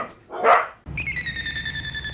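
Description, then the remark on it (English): A pet dog in the room gives one loud bark during the opening of the anime Domestic Girlfriend, then a steady high-pitched tone rings on for the rest of the moment. Nobody speaks. “The dogs love the OP. They're so happy about it.”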